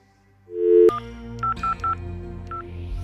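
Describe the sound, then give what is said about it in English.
A telephone number being dialed: a brief steady tone ends with a click, then four short touch-tone beeps in quick, uneven succession, clear, over a low background hum. “Can I use your phone?”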